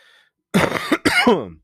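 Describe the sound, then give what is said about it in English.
Two loud, harsh coughs right up against the microphone, one after the other with a brief gap, the second ending in a rough throat-clearing rasp. No talking around them. “I didn't mean to cough in the mic.”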